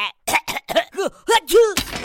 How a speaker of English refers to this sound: Well, that's a first. I sneezed a wrench. And 2 number 9 bolts.